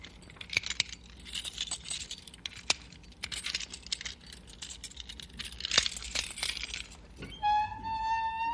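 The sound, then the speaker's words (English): Keys jangle and clink in a lock for several seconds with sharp metallic rattles, then a jail cell door swings open with a steady, high-pitched metal creak at the end. “Stand back from the cell door. Open the door, Cal.”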